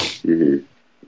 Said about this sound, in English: Sorry for the sniffle there.